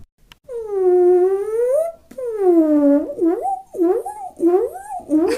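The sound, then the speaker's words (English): A human voice imitates whale song with long, moaning pitch glides: two sustained swooping tones, then a run of shorter rising and falling whoops, fairly loud and alone. “can you do an impression of whale song the way that it kind of sounds like farts?”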